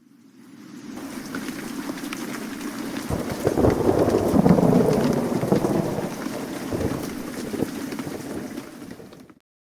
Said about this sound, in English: Es regnet. Say that again. It's raining. Es regnet.